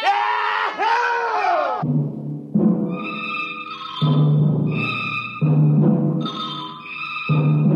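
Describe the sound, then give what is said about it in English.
A couple of loud male shouts burst out at the start, then give way to a continuous rowdy din with bright ringing tones layered over it, as the first Earthmen on Mars celebrate, opening and drinking bottles. “The Earth laughs and shouts echoing across the empty Martian sands.”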